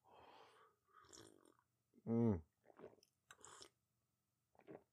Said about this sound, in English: I'm just going to take a sip of my coffee.